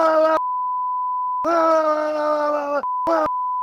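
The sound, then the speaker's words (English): A steady, high-pitched censor bleep covers cuss words during a brawl among a large group of people in a club, running straight through, broken up by loud bursts of strained shouting or groaning voices that cut in and out around it. “And I always thought that the abrupt beep was really funny.”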